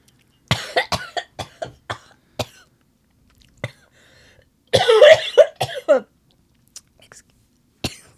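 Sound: coughing fit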